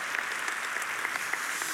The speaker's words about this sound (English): I don't know if you guys have been as blessed as I have by what Rustin did with the ancient teaching series. You can clap for that.